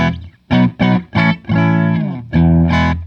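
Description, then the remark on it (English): Clean, dry electric guitar played with all pedals turned off: three short, punchy chord stabs, a longer ringing chord, then two more strikes, loud, with no talking. “So I'll turn everything off so we can kind of have a starting position. All right, so here's the dry.”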